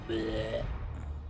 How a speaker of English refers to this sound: And then you feel like a strong urge to let out the biggest burp you've ever burped.